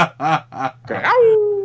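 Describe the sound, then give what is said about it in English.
A person voices three short, clipped yelps, then holds a long, slowly falling tone in an imitation of an animal howl. The voice is fairly loud, with no one speaking. “Well, you know, I was going to howl. I was working on my howl, and then I chickened out at the last minute.”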